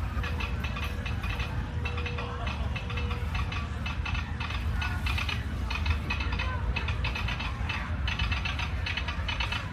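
A steady, rapid mechanical ticking clicks along in the background over a constant low rumble, continuing evenly throughout without pause.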